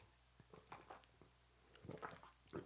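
Quiet sipping of hot jasmine green tea: a few soft slurps and wet mouth noises with small clicks and a swallow, spaced unevenly over a low steady hum, with no talking.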